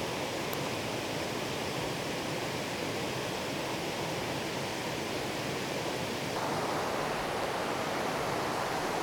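nature, flowing water

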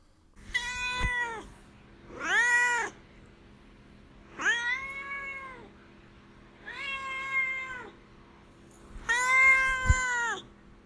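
animal, domestic cat meowing

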